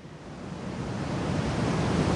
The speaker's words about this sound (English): Isn't this something? This is the Snoqualmie Falls, named after the Snoqualmie tribe, who were a branch of the Coast Salish.